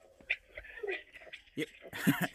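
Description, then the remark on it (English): Dogs whimper and whine with thin, wavering cries, then break into a couple of short, sharp barks near the end, not very loud. “gotta run in by the dogs.”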